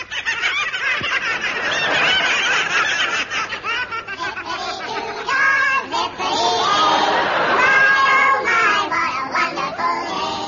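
A noisy flock of birds squawks and honks continuously and loudly after a person shouts "Boo!" to scare them off from digging up seeds, their harsh overlapping calls rising and falling in a chaotic chorus for several seconds.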